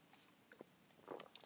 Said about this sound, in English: And I do apologise, it is another early morning, and I do have a coffee, so I will be stopping for my coffee breaks yet again, because I fucking am more man than coffee. 2 seconds for a coffee sip.